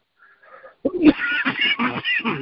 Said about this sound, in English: Excuse me. Don't mean to cough and everybody's here. It's so hot today. Take my inhaler real quick.